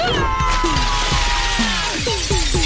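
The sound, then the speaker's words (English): Loud, dense glass shattering as Preen's battle dress crashes through glass in The Res, a bright crashing burst followed by a rapid scatter of tinkling, sliding shards that keeps ringing for a couple of seconds. No voices are heard. “Preen, can your battle dress crash through this glass?”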